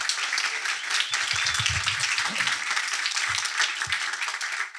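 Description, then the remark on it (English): An audience in Kentucky breaks into a sustained round of applause for the newest companies joining a fellowship program, a dense, steady wash of many hands clapping at even loudness for several seconds, with faint low voices murmuring underneath. “So would you give all of these companies a bit of a round of applause, please?”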